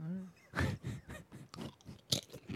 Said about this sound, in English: …, please do not crunch into the mic.